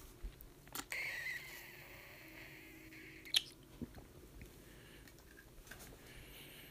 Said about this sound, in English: Oh, excuse me, gotta have a drink.